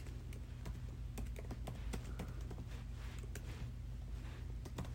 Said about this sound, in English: Would you hurry up? You're oh my god, it's difficult typing.